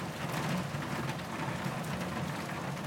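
Steady rain falls continuously, a dense hiss of drops pattering on a surface with a low rumbling undertone, holding an even, moderate level throughout with no voices.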